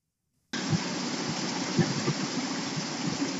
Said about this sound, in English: So unless I turn off all 12 of our fans, yes, I live in Los Angeles without air conditioning, and close all of the windows, this is what you'd hear.